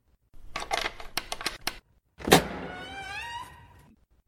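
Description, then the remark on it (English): A jail cell door opens: a quick run of rattling metallic clicks from the lock, a brief pause, then a loud clank and a long, rising metallic screech as the door slides open. “I'll have to close the door again.”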